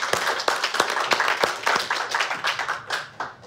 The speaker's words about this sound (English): Wasn't that easy? Give yourselves applause, come on.